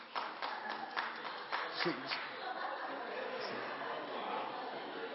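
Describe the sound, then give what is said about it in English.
At a comedy show, single women in the audience clap their hands when asked, a handful of scattered, uneven hand claps in the first two seconds, followed by a steady murmur of crowd chatter and faint laughter. “Single ladies, clap your hands.”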